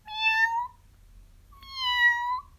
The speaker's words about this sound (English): "Meow, meow, we're thirsty," cried the hundreds of cats, thousands of cats, millions and billions and trillions of cats.